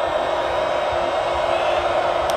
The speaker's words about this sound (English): Crowd on their feet.